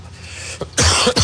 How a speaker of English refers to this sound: Apologize, folks. It's not a Biden COVID cough.